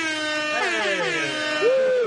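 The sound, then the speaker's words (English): A loud, sustained air horn blast with bending, wavering pitch, ending in a sharper rising-and-falling honk near the end; no talking. “No, play the air horn. Play the air horn. That one needs an air horn.”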